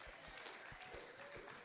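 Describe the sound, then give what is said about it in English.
An audience applauds a person who correctly defined honor, a dense patter of many hands clapping steadily throughout, moderately soft, with no speech over it. “So a round of applause.”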